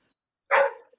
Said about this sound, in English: I actually have a dog who's barking right now in the back, if you can hear her